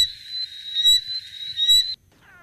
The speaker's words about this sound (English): Now, this isn't people pretending to be frogs. It's the actual frogs. Is that correct? It's actual frogs.